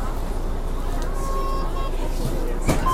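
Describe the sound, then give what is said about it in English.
Steady low engine rumble inside a crowded bus, with a constant murmur of many indistinct voices and a brief sharp clatter near the end. “Let's secure a seat on the bus, man.”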